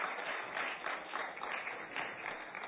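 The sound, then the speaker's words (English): A crowd claps steadily in sustained applause, a dense wash of overlapping hand claps at a moderate, even level with no voices standing out. “Let's give a round of applause again.”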